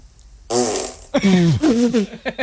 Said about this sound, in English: That's a toxic fart she's got. Holy crap.